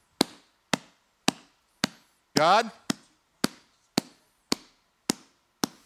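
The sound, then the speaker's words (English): A steady series of about ten loud, sharp knocks pounds on a wooden surface at an even pace, with a single voice briefly calling out midway through. “Then it says, knock, and it literally means to pound.”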